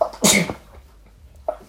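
A single sharp sneeze bursts out near the start, followed by quiet room tone and a faint short vocal sound toward the end.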